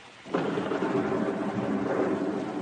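A heavy roll of thunder breaks in after a brief quiet and rumbles on steadily, loud, filling the rest of the moment with a deep, sustained roar and no voices.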